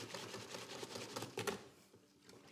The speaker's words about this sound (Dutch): Dan ga ik dan zo goed mogelijk proberen te mengen. Met een garde aan het pakken. Met een garde. Ja. roeren.